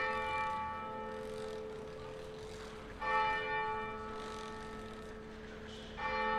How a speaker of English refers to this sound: we've left the Britain's Protection, and we've just been listening to the bells of the Hidden Gem, which is no longer quite so hidden.